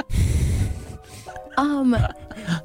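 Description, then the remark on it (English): A heavy breath rushes straight into the microphone with a muffled rumble, followed by a short vocal sound and another softer breath. “People breathing loudly into mics.”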